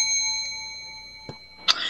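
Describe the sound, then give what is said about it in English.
A small bell is rung to signal the start, with a clear, lingering metallic tone, followed by a soft tap and then a second bright, sharp ding near the end. No one speaks. “All right, when I ring the bell, you may start. I'm going to ring the bell.”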